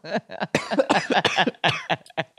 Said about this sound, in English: I'm coughing here.